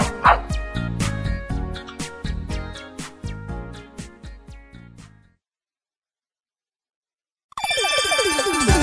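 A dog barks repeatedly in quick, rhythmic bursts over a busy musical backdrop for several seconds, then the sound cuts out into a brief silence before another loud sound begins.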